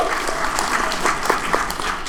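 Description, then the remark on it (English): A crowd applauds steadily, a dense wash of many hands clapping at an even level with a few sharper claps standing out, and no talking over it, answering a request to applaud if they know what Sweetest Day is. “By applause, how many people know what Sweetest Day is?”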